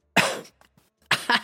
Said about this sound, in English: Jessup blows out the smoke right into Reiner's face, who coughs and waves the smoke away.